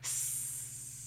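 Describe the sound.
A voice imitates a hissing snake, one sustained breathy hiss lasting about a second, fairly loud, with a faint low hum underneath.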